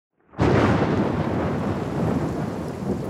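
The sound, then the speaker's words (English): A thunderstorm at sea off the coast of Patagonia, as met by the British warship Wager in 1741, bursts in abruptly after a moment of silence, a loud, sustained roar of rumbling thunder and heavy rain that holds steady without pause and with no voices. “And after months at sea, the Wager, an ungainly British warship, is sailing off the coast of Patagonia, caught in a storm that has so blackened the skies, all the men on board can see is the darkness”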